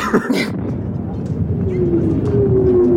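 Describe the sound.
An airplane engine roars loudly and steadily with a rumbling drone, and a whining tone rises out of it in the second half as the plane dives, about to crash. Muffled voices sit underneath.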